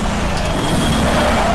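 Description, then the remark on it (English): A race car engine accelerating on a race track, a loud, continuous roar with a dense, gritty rumble that holds steady throughout the short moment, with no voices. “Use a lot of the curb and then some out there. Get on the accelerator.”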